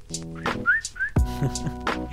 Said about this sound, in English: She loves whistling, and I got that skill from her, no cap. I can give you a sample if you want.